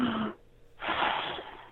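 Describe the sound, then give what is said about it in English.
A person imitates heavy, deep breathing: a loud, airy inhale, a brief pause, then a long, forceful exhale, close up with no other sounds. “But Sasquatch, you know, I heard they do that heavy breathing.”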